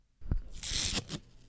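A roll of sellotape is unstuck in a quick rasping rip, starting with a short tug and then a sustained crackly tear lasting under a second, fairly loud, with no voices.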